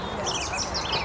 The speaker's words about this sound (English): There's a yellowhammer in the distance and some scrub here.